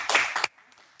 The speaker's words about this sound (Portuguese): Batam palmas aí, pessoal, que estão aqui.